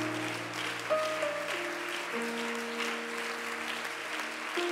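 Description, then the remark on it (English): An audience gives a hand clap of praise to Jesus, a dense, steady wash of clapping, with sustained keyboard chords holding underneath and shifting pitch a few times. “A hand clap of praise.”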